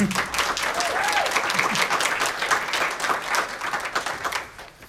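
A crowd applauds steadily for several seconds, a dense wash of many hands clapping at once, loud and sustained before tapering slightly at the end, with a faint voice briefly audible underneath.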